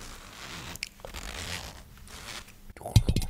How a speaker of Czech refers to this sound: Jo, to tady děláš ASMR. Ty jsi prostě rozhodl, že tady zajebeš to ASMR, ten zip.